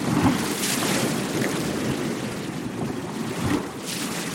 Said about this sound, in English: Every night my family falls asleep to the sound of waves breaking on the shore. When we hear the water gather, lift, slosh, and churn, it's as if our beds are turning into beaches.